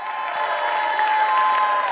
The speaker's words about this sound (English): I want to take like a 10-second praise break of like giving the Lord some big shouts of praise, some big shouts of thanks. Come on. Can you do that across the room?